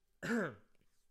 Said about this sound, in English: Don't worry, y'all. That's not a Rona cough. That's just clearing my throat.